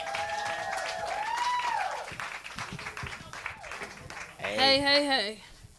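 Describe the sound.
An audience at a comedy show claps steadily for several seconds as comedian Paris Sashay is introduced, a dense crackle of applause mixed with voices and shouts, swelling near the end with a loud whooping cheer before easing off.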